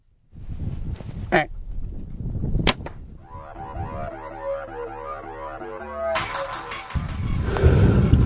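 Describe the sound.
An arrow is loosed from a bow at a buck during a deer hunt, with a sharp, sudden snap over a steady rush of wind-like noise, followed by low, excited voices.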